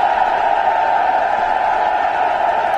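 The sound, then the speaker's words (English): A large crowd cheers and applauds in a dense, steady roar that stays loud and unbroken for about three seconds, with no single voice standing out, as President Donald Trump walks out onto a stage, clapping. “So President Trump is applauding. You know, he's clapping as he usually does when he walks out onto a stage.”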